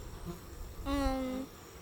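A honeybee buzzes past around a beehive for about half a second, a steady droning hum that cuts off abruptly, with quiet outdoor background before and after and no talking.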